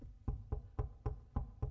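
A steady series of six firm knocks on a door, evenly spaced, each a dull wooden thud with no voices present.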